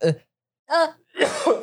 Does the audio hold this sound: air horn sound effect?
no